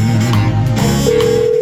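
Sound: telephone ringing sound effect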